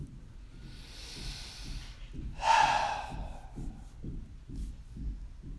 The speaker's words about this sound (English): And we take three deep breaths, in through the nose, filling the body, and out through the mouth. This type of breathing just naturally gives the body the signal that everything is okay.